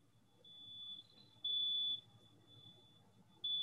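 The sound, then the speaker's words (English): A fire alarm going off somewhere nearby, not in the house, sounds a steady high-pitched tone that pulses louder in bursts, about half a second each, over a low rumble. “Yeah, there's like somebody's fire alarm is going off nearby, but it's since stopped going off.”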